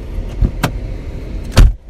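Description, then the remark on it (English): A car door that had been frozen and recently thawed is unlatched with a quick click and clatter, then slammed shut about a second later with a heavy, loud thump over a low background rumble. No voices. “maybe someone tried to open my car door, but it finally thawed like a couple days ago.”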